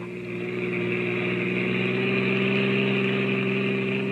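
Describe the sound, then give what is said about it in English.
A car engine hums steadily at a low, even pitch as the car, carrying three silent people, reaches the outskirts of a town; it runs continuously with no voices, the drone holding constant throughout. “It's about an hour later now, and a car with three very silent people in it has just reached the outskirts of the town.”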